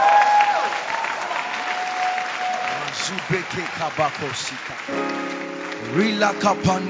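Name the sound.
audience clapping hands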